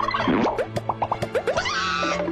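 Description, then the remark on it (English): A turkey gobbles in a radio advertisement for Indian Head Casino, in a quick, bubbling burst of about ten warbling notes, fairly loud, trailing off into a brief sustained tone. No one speaks. “In November at Indian Head Casino, the turkeys are getting plucked.”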